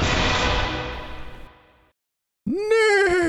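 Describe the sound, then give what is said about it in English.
A fading breathy rush drops into brief silence, then a loud horse whinny bursts in, its high pitch swooping down and wavering with a shaky vibrato. “It's just like me, but with four hooves and a bushy tail and a mane.”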